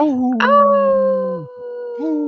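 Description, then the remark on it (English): A wolf howling in long, sustained, gently falling tones, loud, with a second howl rising near the end; no one speaks. “Hey, this portion of the show is brought to you by Howling for Wolves, protecting wolves for future generations.”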